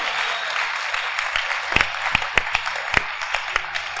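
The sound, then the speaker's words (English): A church audience breaks into scattered, uneven clapping after being told everyone will invite one person to church next week: a handful of sharp individual claps rising out of a steady crowd murmur, never building into full applause. “Oh, you are not clapping.”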